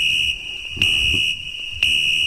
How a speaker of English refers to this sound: Is there a fire alarm going on?